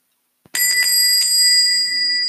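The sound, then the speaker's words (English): A loud, bright bell rings, its metallic tone sustained steadily for nearly two seconds after a brief click, with no voices. “This is a loud bell.”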